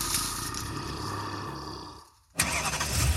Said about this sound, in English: If you were in a horror movie, this would be the part where the used car you just bought doesn't start.